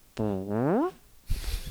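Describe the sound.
A voice imitates a fart with a buzzy, harmonic tone that bends upward at the end like a question, followed by a short burst of rough noise.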